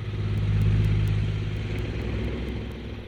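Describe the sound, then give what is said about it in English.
Recorded road traffic relaxation sounds played by Google Assistant: steady traffic noise with a deep engine rumble and broad hiss, like cars passing continuously; fairly loud and constant, no voices. “Hey, I got traffic sounds.”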